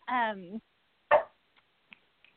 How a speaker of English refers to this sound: I'm sorry, my dog is starting. He always gets excited.